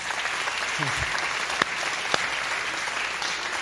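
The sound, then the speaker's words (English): A crowd at Pathway Church in Burleson, Texas, claps steadily for the church's kids, a dense wash of many hands applauding throughout, with a couple of sharper claps standing out and a faint voice briefly underneath. “Hey guys, can we give a round of applause to our kids?”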